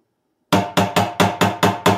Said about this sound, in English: Usually we have a knock, right? We have a guest coming in. He's been waiting. Usually it's a knock, Warren, but that's a stick.